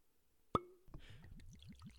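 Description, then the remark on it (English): A cork pops from a whiskey bottle with a single sharp pop, followed by rhythmic glugging as liquid begins to pour from the bottle. No voices are heard. “Someone want to do the cork pop?”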